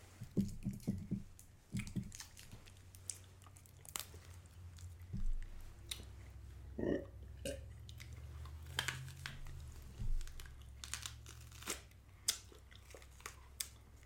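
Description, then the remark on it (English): Someone chews bread dipped in bread sauce, with soft, moist squishing and crunchy bites, repeated irregularly over a low steady hum, with no talking. “I think you should do the honors and eat the bread with him.”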